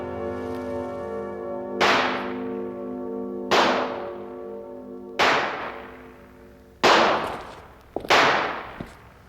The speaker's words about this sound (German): Dort hat er sogar einen Schießstand. Oh, peng, peng! Ratatatatam! Anfänger, jeder Schuss war daneben.